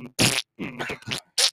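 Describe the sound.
A person blows several wet, buzzy raspberry fart noises with their mouth during a beatbox, in short choppy bursts with brief gaps, mixed with throaty grunting tones.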